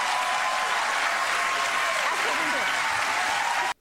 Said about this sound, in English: Have you ever, can you imagine being in a crowd that literally jumps for joy and gives a standing ovation for killing babies?